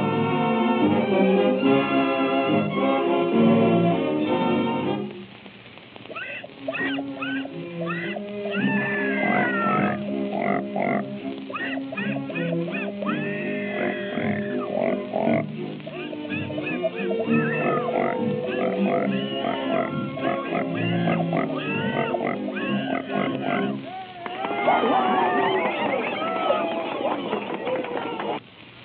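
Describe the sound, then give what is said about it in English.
A singing pig act: pigs squeal and oink loudly in a dense, steady stream of pitched grunts and shrill wavering squeals, with a brief dip around five seconds and a burst of high squealing near the end. “Presenting Mr. and Mrs. Patty Pig.”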